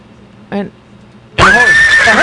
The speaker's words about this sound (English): A horse!